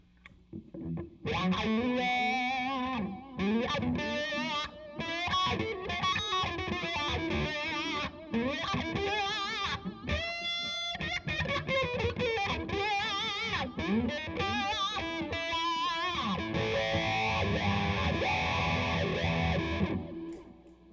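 A distorted electric guitar, a Les Paul on its bridge pickup with distortion setting number five, played through a wah pedal, loud, with sweeping vowel-like tone shifts across a busy run of notes and bends lasting about twenty seconds, no voices.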